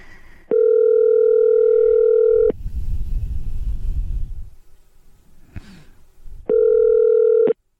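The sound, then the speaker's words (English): A telephone line tone on an outgoing call: two long, steady electronic beeps about two seconds each, separated by a few seconds of soft breathing and rustling at the phone. “I'm gonna make some phone calls and it'll be fun.”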